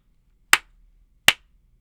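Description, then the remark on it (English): Two crisp, sharp key presses on a keyboard with Gateron Blue switches, typed on the W keys, spaced under a second apart, each a bright click that decays quickly, with silence around them and no voices. “And for the gaming folk, I am typing on the sad W keys.”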